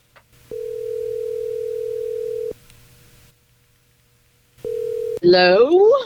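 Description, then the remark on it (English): A steady telephone dial tone holds for about two seconds, stops, then returns briefly before a voice answers over the line, rising and warbling. “we just have to just dial and smile and just put on our game face. All right, well, here we go. Dial Teresa, please.”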